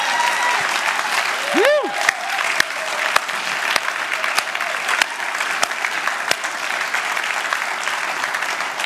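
A crowd applauds steadily for about nine seconds, the dense clapping holding an even loudness throughout, with a short rising whoop or whistle cutting through near the start.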